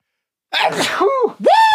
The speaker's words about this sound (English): Man, is that the first sneeze we've had on the show? That might be. It took us like 60 episodes for me to sneeze.